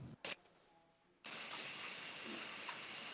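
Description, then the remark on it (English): A short splash, then after a quiet moment a steady, loud hiss of running shower water begins and continues unbroken. “Taking a shower, man?”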